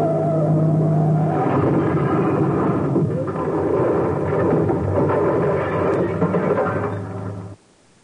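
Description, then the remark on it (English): A car swerves at the edge of a cliff with a loud, roaring engine and heavy rumbling noise, sustained for about seven seconds before cutting off abruptly. No voices are heard. “Hey, Mr. X, this ain't no driver. That's a cliff. A cliff! Hang on”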